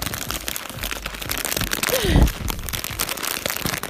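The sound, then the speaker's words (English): Dense crackly crunching throughout, with a louder, sharper crunch burst near the middle, as Smartfood popcorn from a bag is chewed, like chewing with the mouth open. “Yes, crunchy. That was a good crunch.”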